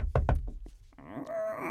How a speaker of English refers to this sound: Okay, you knock on the door.